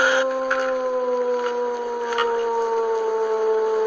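Several sustained, wavering howls overlap in a steady chorus, with high tones gliding slowly downward, like a pack of coyotes howling together at night under a full moon in Wisconsin, with no talking.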